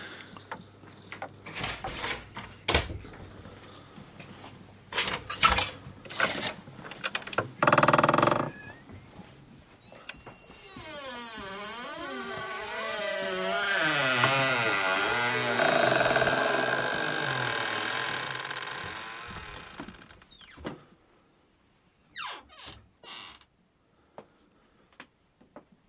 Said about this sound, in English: Yeah, just walking down the steps. Down. Until we get to the big door, and then we'll be into the studio, which is totally soundproof, perfect for making programs.